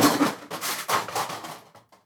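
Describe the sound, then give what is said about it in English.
A bookshelf full of books falls apart with a loud, clattering crash of wood and books tumbling down, several rapid bursts of impact noise over about two seconds before it trails off into a few faint knocks. “The whole fucking bookshelf just fell apart.”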